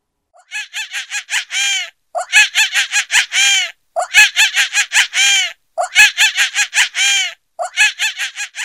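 A monkey calls out in five loud bursts, each a rapid run of shrill, piercing hoots and screeches separated by brief pauses, with no talking.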